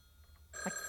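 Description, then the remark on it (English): After a brief quiet moment, a telephone bell bursts into a loud, bright metallic ring, its shrill trill sustained to the end with no voices. “You have to answer the phone.”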